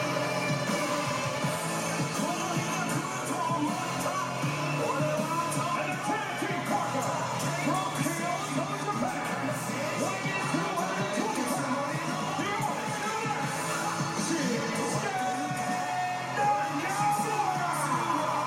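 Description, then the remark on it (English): A large arena crowd sings along in unison over loud new entrance music for the wrestler Nakamura, a dense, steady wall of voices and instruments that keeps going without a break. “They're still singing it.”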